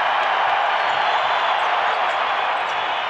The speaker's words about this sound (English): Crowd chanting Conley. Listen to the crowd. They're chanting Conley.